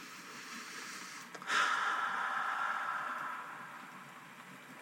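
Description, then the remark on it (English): Steady, soft hiss of falling rain, with a car swishing past on a wet road that swells up suddenly, lingers for a couple of seconds, then fades back into the rain. “And as we listen to the rain fall and the cars passing by and the kitties sleeping”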